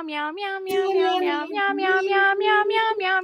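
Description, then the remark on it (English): Human voices sing the Meow Mix jingle, short and bouncy, entirely in repeated 'meow' syllables, about eight sung meows in a steady rhythm, loud, imitating a cat. “James said invite you to Meow Mix.”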